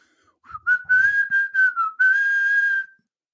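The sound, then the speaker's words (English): A person whistles a short tune: a few quick, clear notes followed by one longer held note. The whistling is loud and bright, with no talking. “By whistling.”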